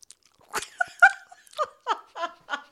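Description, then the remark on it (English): A voice imitates loud open-mouth chewing: about seven wet, smacking bursts in a steady rhythm, fairly loud, with a brief squeaky, vocal tone in the middle and no words spoken. “chewing with the mouth open and that noise that comes out of your mouth when you're doing it.”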